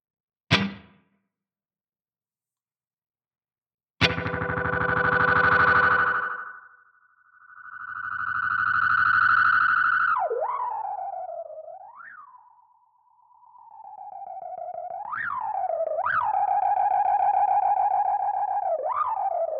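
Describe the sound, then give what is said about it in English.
A loud, sustained feedback tone from an effects pedal swells after a brief click, drenched in reverb, its pitch bending and swooping in repeated slides over about fifteen seconds with no talking. “Hang on, I'm going to add a reverb again.”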